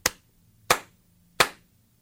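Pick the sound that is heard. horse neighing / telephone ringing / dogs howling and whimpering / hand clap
hand clap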